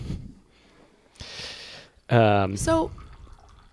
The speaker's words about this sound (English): Listen to that pour. I hope it's coming over the microphones.